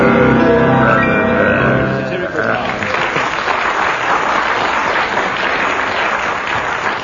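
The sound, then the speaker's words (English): A short burst of voice or tone gives way to steady, loud audience applause used to score a performance, a dense crackle of many hands clapping that holds for several seconds. “Well, judging from that applause, we'll give you, what, 6 marks?”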